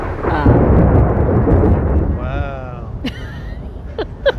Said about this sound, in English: It's a thunderstorm coming through. That's okay, though.